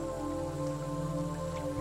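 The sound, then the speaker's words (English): Steady rain falls in a continuous, even patter, with a soft sustained musical tone humming underneath. No one speaks. “But when it was raining, she could bundle up inside and not feel a single drop of water on her wings.”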